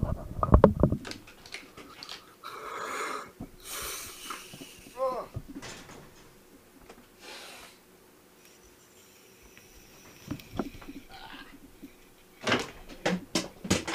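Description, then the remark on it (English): Low, gurgling bubbles of a bong hit that goes wrong rumble unevenly for several seconds, broken by scattered clunks, hissy exhales and a few sharp bursts of noise near the end. “I need to grab my bong.”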